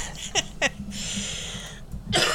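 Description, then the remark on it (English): A harsh coughing fit: two quick strained coughs, a stretch of raspy wheezing breath, then another loud hacking burst at the end. “Here, I'm going to choke and cough and everything else.”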